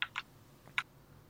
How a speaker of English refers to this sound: What were those clicking clicks? Were who you was typing? Were you typing while you were doing all this